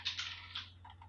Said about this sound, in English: Sorry, guys. I'm just throwing my dice all over the floor. Just keep running through the dice. It's fine. Really just cool ignore the ones falling on the floor.